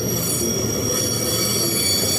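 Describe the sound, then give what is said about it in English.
A long train with tarpaulin-covered loads rolls steadily past, slowing right down, its wheels giving off a sustained high metallic squeal over a low rumbling drone, loud throughout. “It's a long train.”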